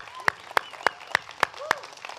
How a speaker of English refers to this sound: Can we one more time put our hands together for the Lord Jesus? That's why we're here today. Come on, can we give 5 seconds of praise to the King of Kings? Come on, every hand clapping.